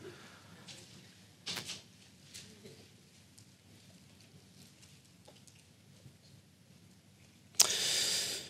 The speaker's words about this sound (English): It's out of Luke 3, the first 10 verses of Luke 3. If you want to turn there, should also be on the screen. Love to hear the pages turning.